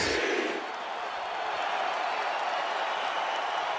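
A loud, steady wash of crowd noise, not a live crowd, chanting for the Undertaker as he says goodbye, with applause and cheering blending into a dense roar that holds at an even level throughout, with no distinct voices rising above it.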